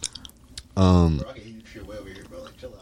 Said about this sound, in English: But I don't want to hear you chew like the fucking cow your people eat.